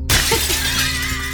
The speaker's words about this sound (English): Glass. Broken glass. Broken glass.